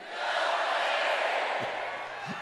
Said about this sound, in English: And he kept doing that, guilty or not guilty. And, of course, the crowd kept shouting guilty.